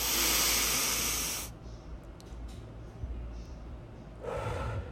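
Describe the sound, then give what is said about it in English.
A loud, sniffing deep inhale through the nose during a breathing exercise lasts about a second and a half, then fades to quiet before a second, softer breath rushes in near the end. “Okay, so let's do some breathing. One deep breath in.”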